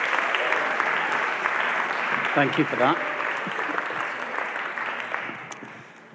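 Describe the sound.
Steady applause from an audience welcoming a speaker up, a dense wash of clapping that slowly fades, with a man briefly speaking over it partway through.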